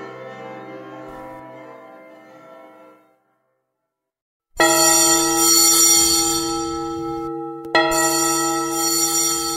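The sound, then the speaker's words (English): Loud, bright alarm bells clang continuously, their harsh ringing filling the space, with a quieter fading ring at first, a brief pause, then a sustained loud peal broken by one short gap. “Hear the loud alarum bells, brazen bells.”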